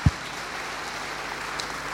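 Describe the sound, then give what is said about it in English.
An audience claps steadily for the full two seconds, a dense, even wash of many hands with no voices, opened by a brief low thump. “That's, yeah, clap is okay. You can clap.”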